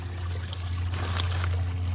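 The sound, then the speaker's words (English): A bullfrog leaps into pond water with a brief, soft splash midway, set against a steady low hum and a faint continuous trickle of water. No voices are heard. “yeah, there goes another one. He just jumped in there.”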